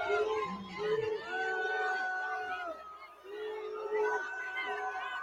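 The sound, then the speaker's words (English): A large Somali audience at a concert in Minnesota's 5th congressional district boos their congresswoman loudly, many overlapping voices holding long, drawn-out tones that swell, dip briefly, then rise again in waves as she tries to tell them to stop. “Right, she's trying to, the more she tries to tell them to stop booing, the more they boo.”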